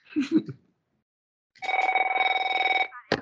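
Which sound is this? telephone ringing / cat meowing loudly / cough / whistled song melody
telephone ringing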